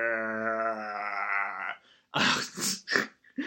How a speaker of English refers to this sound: So, like, there you can hear the birds and the sheep. Oh, God. If I never hear another fucking sheep, it'll be too soon.